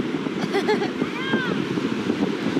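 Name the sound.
ocean waves and wind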